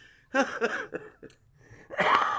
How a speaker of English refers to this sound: Oh, we're both coughing. We're old people.